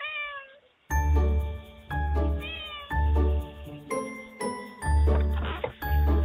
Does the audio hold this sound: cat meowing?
yes